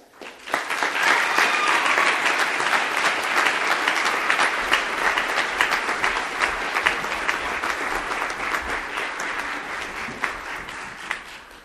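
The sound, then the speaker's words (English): Sustained applause from an audience recognizing students for their academic excellence, a dense, steady wash of many hands clapping that starts abruptly, stays loud for about ten seconds, then thins slightly toward the end. No voices stand out. “And please join me in recognizing them for their academic excellence, but also the way that they've been leaders in our campus and college life.”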